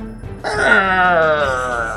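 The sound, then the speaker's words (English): A person makes a long, mournful moaning wail, imitating a sad, wounded boar. The whining cry starts abruptly, wavers in pitch and slowly sinks, holding steady and fairly loud for over a second. “What kind of sad pig noises does he make?”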